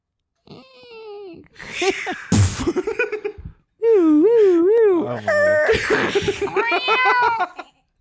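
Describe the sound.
Someone imitates a goat with a series of loud, wavering, nasal bleats, the pitch quavering up and down, broken by brief pauses and a few bursts of breathy, laugh-like noise.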